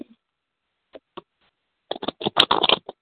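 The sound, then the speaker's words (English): A few soft isolated clicks, then a rapid burst of crisp papery riffling, fairly loud, as a deck of cards is shuffled before a card is pulled. “Tell me when to stop shuffling, honey, okay?”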